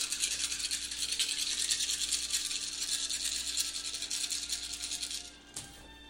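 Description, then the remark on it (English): A handful of dice rattle and clatter steadily for about five seconds as they are rolled for an accuracy roll, a bright, busy scraping noise. Then it cuts off, followed by one small tap before quiet. “Okay, and then you should probably have a plus number after the number of dice you're rolling.”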